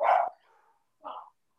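A dog barks twice, a sharp loud bark followed a moment later by a shorter, softer one, with no one talking, as a FedEx delivery comes to the door of a home.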